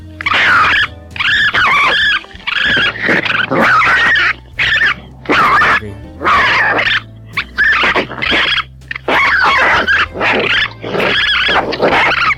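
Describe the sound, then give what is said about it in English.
Raccoons fighting: loud, harsh snarls, growls and shrill screeches come in rapid, overlapping bursts with only brief pauses, continuing throughout without any talking. “Now, that mixed with the sound of fighting raccoons.”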